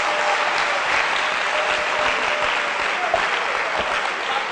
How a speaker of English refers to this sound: Why don't you give a clap of offering for pastors and shepherds?